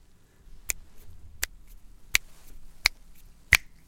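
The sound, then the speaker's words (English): Five crisp finger snaps at a steady, unhurried pace, each a sharp dry click, with quiet background between them and no voices. “It's clicking fingers”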